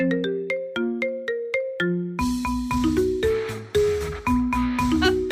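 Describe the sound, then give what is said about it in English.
A phone ringtone plays a catchy movie theme song, opening with bright plucked synth notes, then a full arrangement with bass and drums kicks in, loud and continuous, with no voices. “All right, ringtone number three, and this is the last one.”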